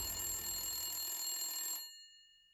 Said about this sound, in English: But then they got a hint. A phone call.